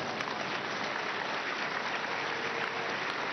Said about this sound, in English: Now, why clapping at this time? Can we count these people that clapping as people that I'm talking about?